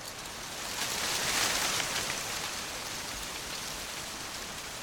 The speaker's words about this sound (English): So I went on a mission to capture this field of corn, and it was quite amazing. It was like an ocean. You could hear the wind travelling across the corn.